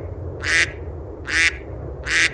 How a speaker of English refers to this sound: Oh, fuck you, duck.